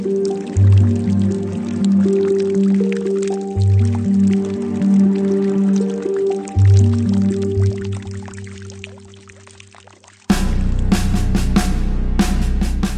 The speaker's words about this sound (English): Today, this tunnel is known as Hezekiah's Tunnel, named after the man who ordered its creation when the city was about to be encompassed by the Assyrian army. Water still flows from the Gihon Spring through the tunnel as it did 2,700 years ago.